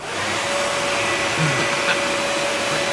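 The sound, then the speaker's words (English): A leaf blower runs steadily as it is used to blow up a big balloon around a man: a loud, even rush of air with a constant mid-pitched motor whine that never changes over the few seconds. No one speaks. “So he uses a leaf blower.”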